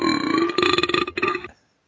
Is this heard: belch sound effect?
yes